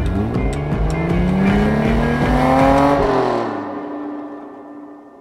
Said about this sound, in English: The cops brake, and the car gets away.